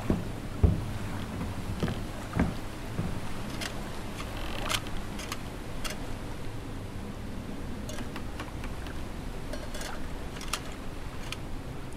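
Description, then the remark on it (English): Scattered mechanical clicks and light metallic clunks as an outboard boat motor is handled and inspected, over a steady low ambient hiss with no talking. “We haven't tried the engine on this one yet. Check the outboard motor.”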